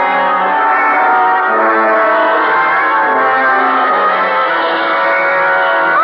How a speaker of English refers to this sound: Holy! It sounds like somebody... Shut it off! I'll be done. Sure. The screams that Walker and his wife said they heard. And that record's what gave him the idea.